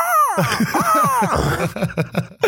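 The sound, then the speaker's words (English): A person vocally imitates a hawk's screech: a rising, strained cry with harmonic sweeps, followed by breathy, choppy vocal bursts that sound like laughter, fairly loud. “Let me see your hawk noise.”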